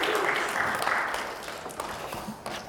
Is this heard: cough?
no